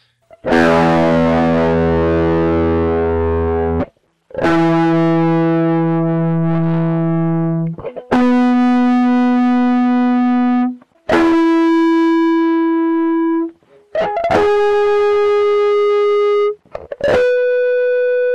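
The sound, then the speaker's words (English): Heavily distorted electric guitar rings out about six loud harmonic notes, each held for a few seconds before the next, climbing steadily higher in pitch with no voices. “Here's the same thing again, but with a heavily distorted electric guitar.”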